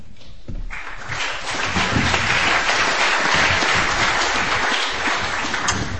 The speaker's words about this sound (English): You should really wait to clap until I'm done because maybe I'm not so interesting, you know?